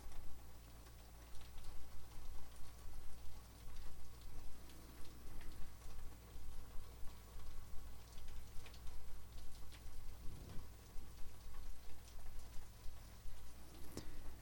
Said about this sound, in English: I wonder how well you can hear the rain. I guess I can hear it. It's rather loud in this room